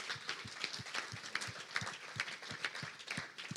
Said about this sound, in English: So can we just give her a big clap, first of all?